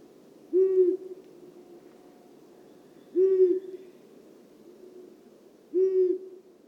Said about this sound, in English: The long-eared owl, Asio otis, is found across North America and Eurasia. Here's one in Poland making a stereotypical hooting sound.